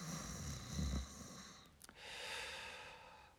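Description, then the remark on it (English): A voice imitates the gentle snore of a person peacefully asleep during a movie: a low, rumbling inhale followed by a long, airy exhale, with a small click between, and no talking. “But they were definitely like those really peaceful snores, like.”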